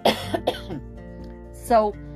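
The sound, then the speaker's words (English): A person with a cough of about three months coughs several times in quick succession, fairly loud, followed by a pause and then a throaty, voiced cough or throat clear near the end. “It's just me coughing, like right now.”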